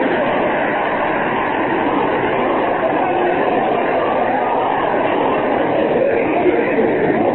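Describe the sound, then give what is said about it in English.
An old car motor knocking as it drives, heard as a steady, loud, rough drone that runs without a break for the whole stretch, with no clear pauses or changes in pitch. “Listen to the knock in that motor.”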